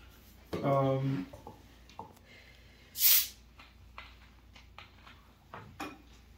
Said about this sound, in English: can I ask you to pour me some seltzer? You can do it. Okay. Thank you.